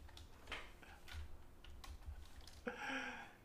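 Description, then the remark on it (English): Irregular clicks of typing on a computer keyboard to Google apogee and perigee, a quick scattered run of keystrokes, fairly quiet, with a brief murmur of voice near the end. “This is your keyboard. Google apogee and perigee.”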